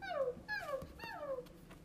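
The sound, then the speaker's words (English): A voice imitates small dogs yipping in a counting song about dogs: three high, whiny yelps that slide downward in pitch, evenly spaced, with no other talking. “Three dogs, woof, yep, yep.”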